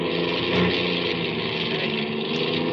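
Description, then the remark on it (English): A car engine runs steadily throughout, a loud, continuous droning hum with a slight rough texture and no break in its level. “Hey, something's gone haywire. What's the matter? You said this car was in shape.”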